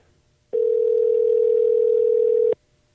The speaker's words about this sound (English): let's dial Bob Madison from Innova